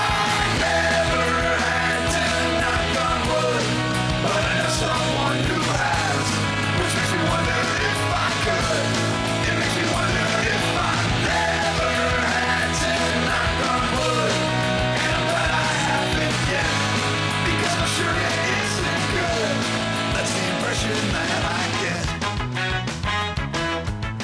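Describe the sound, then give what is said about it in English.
A ska song plays loud and full, with a singer letting out a raw, shouted scream over the steady pulse of bass, guitar and drums. “My brother Andrew loves this song and loves the scream especially.”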